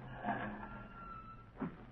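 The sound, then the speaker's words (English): A car engine rumbles low and steady, easing down as the vehicle pulls up and comes to a stop outside a lawyer's building, with a couple of brief louder bumps along the way. “I want you to wait in the car, please.”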